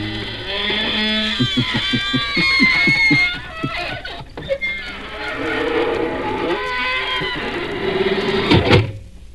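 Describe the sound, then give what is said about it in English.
The squeaking door of the Inner Sanctum mystery radio program creaks slowly open with a long, drawn-out squeal, its wavering, groaning pitch stuttering in rapid pulses before stretching into a loud, rising screech. “Folks, here we are outside the squeaking door.”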